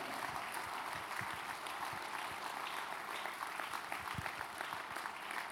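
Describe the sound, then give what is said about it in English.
A crowd claps steadily for several seconds, a dense, even patter of many hands with a bright, hissy texture and no clear break or single standout clap. “Oh, you're not clapping your hands.”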